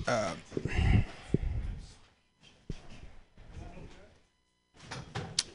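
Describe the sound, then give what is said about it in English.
A door is shut at a comedy show in San Francisco with a couple of solid thuds and clunks, mixed with shuffling and rustling noise and brief muffled voices in the room. “I don't need the door closed”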